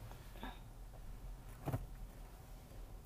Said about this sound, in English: Okay. We're going to park right here. All right, guys. I'm going to need to go. See that? Y'all done had to listen to me park on the podcast.